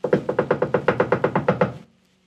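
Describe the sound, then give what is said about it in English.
Loud, rapid knocking on a closed and locked door, about a dozen sharp, evenly spaced raps in a quick steady rhythm, heard alone, then stopping abruptly into silence; women knocking at night at the door of a wedding, begging to be let in. “Please let us in," they begged, knocking loudly.”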